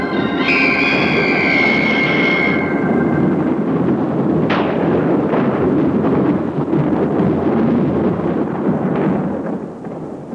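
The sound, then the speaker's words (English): A loud, continuous storm rumble fills the whole recording, with a sharp thunder crack near the middle. A sustained organ-like tone rings briefly at the start. No one speaks. “Can they hear the storm or what?”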